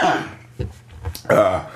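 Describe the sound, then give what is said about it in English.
A person coughs and clears their throat, a few rough, throaty bursts in quick succession, with the last one loud and drawn out. “Sorry about the coughing, you guys.”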